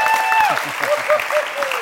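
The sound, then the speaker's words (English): An audience at a church service applauds the Lord before sitting down, with steady, dense clapping, while a few voices call out and whoop over the applause. “Before you sit down, can we all applaud the Lord in this place?”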